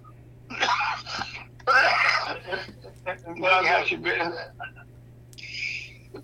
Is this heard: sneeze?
yes